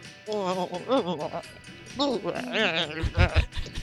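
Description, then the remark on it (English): A person imitates a baby goat's bleat in a high, wavering, quavering voice, several shaky bleats in a row, fairly loud, ending with a few low thumps. “It's just a tiny little baby goat.”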